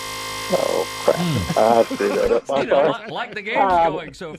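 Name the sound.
game buzzer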